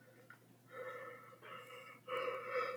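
A person yawns, a long drawn-out voiced exhale that swells in a few stretched pulses, growing louder toward the end, with no talking.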